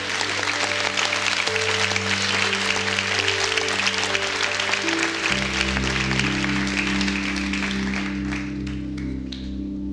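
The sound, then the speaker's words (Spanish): Dense, continuous audience applause fills the whole stretch, loud and steady, over sustained low musical chords that shift once midway, with the clapping thinning slightly at the end. “Ese es aplauso de ópera.”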